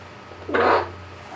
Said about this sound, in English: There's a duck in here, dude. Shit, did someone hear that? The duck in here.